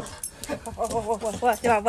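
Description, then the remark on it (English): A dog whimpers in greeting in a rapid string of high, wavering whines, each rising and falling, running almost continuously with short breaths in between. “You'll never ever beat the greeting you get from a dog.”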